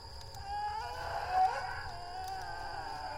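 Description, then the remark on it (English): An eerie, drawn-out, echoing moan in the woods, not quite human, wavers and slides in pitch, swelling to a peak midway before fading back, over a steady low rumble with no one talking. “A moaning which seems not quite human.”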